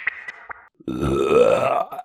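A loud, drawn-out deliberate burp produced by swallowing air, with a low, rumbling, rising croak lasting over a second, preceded by a few faint clicks and a brief higher tone.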